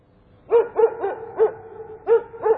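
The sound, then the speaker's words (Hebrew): A female family dog barks six times in a steady, evenly spaced series of short, clear yaps at moderate volume, with no voices and only quiet background between barks. “יש לנו כלבה שאוהבת בעיקר תפוחים מקולפים.”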